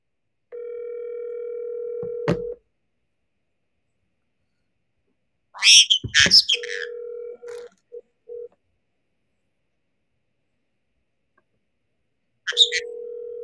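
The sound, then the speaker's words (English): An outgoing phone call's ringing tone: a steady, clear electronic tone in roughly two-second bursts separated by long silences, with a brief chirpy burst of noise midway. No one speaks. “I'll just call Andrew and then he can tell us.”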